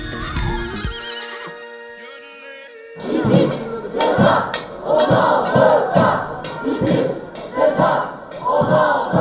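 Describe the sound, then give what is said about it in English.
A large protest crowd outside the European Parliament in Strasbourg on 21 September 2017, as MEPs were to vote on the CETA trade deal with Canada, chants loudly in a steady, rhythmic pattern of repeated shouts, preceded by a brief high, wavering tonal wail at the start. “Large protests outside the European Parliament in Strasbourg on the 21st of September 2017, when MEPs were to vote on a trade deal with Canada, known as CETA, the Comprehensive Economic and Trade Agreement.”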